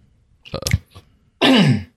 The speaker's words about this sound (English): I'm about to cough real quick.